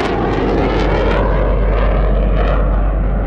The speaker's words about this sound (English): And a moment later, I could hear this. It would be an F-8U Crusader bomber coming up from the south.